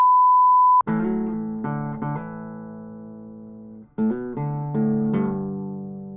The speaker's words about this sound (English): So when I was going to give you, like, my horrible, like, this ain't parody suggestions, and, like, you're supposed to, like, censor out everything with, like, the beeps, you can't really do that, right?